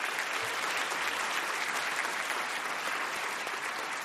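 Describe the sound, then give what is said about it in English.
Steady, sustained applause from a hometown crowd at Yale University welcoming Yale philosophy professor Jason Stanley, a dense wash of many hands clapping at an even loudness for the full stretch with no voices standing out. “Jason, you're getting that hometown crowd applause.”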